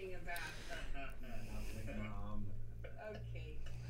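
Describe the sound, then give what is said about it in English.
A person vocally imitates someone coughing at smoke, producing a run of throaty, wheezy hacks and snorting breaths that sound fairly loud, with other voiced noises around them. “He's coughing at the smoke.”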